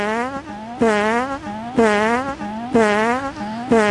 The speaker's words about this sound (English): It sounds like three farts. Okay. Yeah, this is a sample of what it sounds like. That is the alarm, and it will not stop now, apparently. I don't know if this is a drill or not.